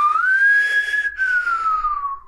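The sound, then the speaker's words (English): A single hum-whistle, humming and whistling at once, rises slightly, holds, then slides back down over about two seconds, breathy and fairly loud, with no talking. “Can you do that? Like the hum whistle? Yeah, the hum whistle.”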